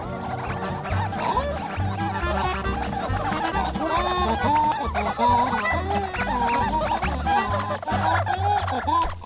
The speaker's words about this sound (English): And I just love this because the foley in this short is amazing. Like, all of the little birds are like little squeaker toys. Uh-huh. And then the big bird is like a horn, like, huh?